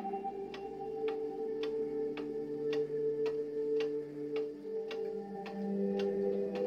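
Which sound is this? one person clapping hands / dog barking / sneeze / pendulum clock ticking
pendulum clock ticking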